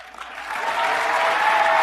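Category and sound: crowd, crowd cheering and applauding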